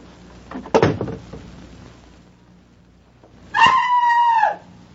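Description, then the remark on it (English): A bathroom door shuts with a sharp thud, followed after a pause by a sustained, muffled scream from inside the bathroom, screamed as loudly as possible, held for about a second before cutting off. “would you mind going back into the bathroom and closing the door behind you? Then scream as loudly as you can.”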